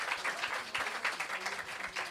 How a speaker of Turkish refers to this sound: Dolayısıyla yani bir alkış alalım gecenin sonu herkes için.